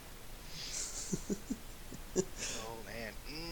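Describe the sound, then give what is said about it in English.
A quick, soft papery riffle of a deck of about 100 playing cards being shuffled, then a few light taps and breathy sounds before a person starts talking near the end. “I'm shuffling 100 today.”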